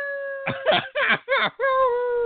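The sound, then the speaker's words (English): A person imitates a weak howl: a wavering, mid-pitched voiced tone broken into a few choppy bursts, then a steadier drawn-out note that slides gently downward. “Such a weak little howl.”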